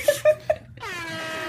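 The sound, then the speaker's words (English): A voice imitates an air horn by mouth: three quick, punchy honks followed by a longer, droning blast that sags downward in pitch, sounding deflated and sad. Fairly loud, with no other talking. “That was a sad air horn.”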